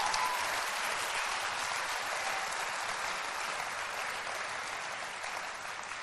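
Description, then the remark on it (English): An audience claps for Jesus in a dense, sustained burst of applause, steady and fairly loud throughout, with no voices standing out above the crackling wash of hands. “Clap for Jesus, somebody.”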